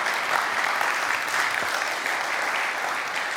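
Steady audience applause after a reading from Nehemiah chapter 4, a dense crackle of many hands clapping at once, sustained and fairly loud throughout with no voices standing out.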